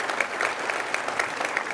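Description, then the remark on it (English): A smattering of applause at an event in Zionsville, Indiana, scattered claps pattering unevenly at moderate volume with no voices over them, a thin, crackly wash of hand claps. “I will say it, a smattering of applause.”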